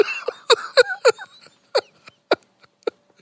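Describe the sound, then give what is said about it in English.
A voice imitates snoring with a rapid run of short, raspy snorting bursts, loud at first and then thinning into sparser, fainter snorts over about three seconds. “And at one point towards the end, you just hear … just starting snoring.”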